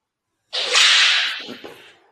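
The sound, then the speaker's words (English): A single sharp whip crack bursts out of silence, loud, then trails off into a broad hissing rush that fades over about a second and a half. “That sound like a gunshot. Yeah, it's a whip.”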